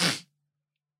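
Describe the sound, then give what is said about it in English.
A single sharp sneeze bursts out, a loud, breathy blast lasting a fraction of a second before silence. “Bless you. Sorry, it hurt me.”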